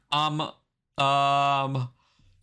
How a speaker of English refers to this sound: Stop yawning, bro. You're going to make me yawn. I'm trying. I had a 12-hour shift last night.